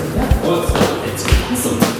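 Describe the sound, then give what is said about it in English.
Heavy footsteps thud up a stairwell, four uneven steps ringing with a hollow echo off hard walls, with faint voices murmuring in the background. “It's so echoey in here.”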